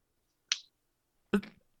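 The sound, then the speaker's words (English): A sharp hand clap rings out in otherwise quiet surroundings, preceded almost a second earlier by a lighter, crisper click. “If you can hear me clap once.”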